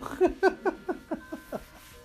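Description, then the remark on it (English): A grandfather clock that runs a little slow chimes a rapid run of about eight ringing strikes, evenly spaced and gradually fading, with a faint sustained tone lingering underneath and no talking. “Thankful for the grandfather clock over, you know, making it so you don't have to talk. It's almost done.”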